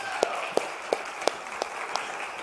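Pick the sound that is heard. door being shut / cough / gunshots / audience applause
audience applause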